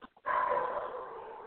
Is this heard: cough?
no